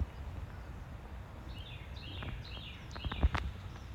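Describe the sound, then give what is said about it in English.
Several quick, high chirps from birds in the trees at dawn in a neighborhood, fairly faint, scattered over a steady low outdoor rumble with no talking. “Birds in the trees.”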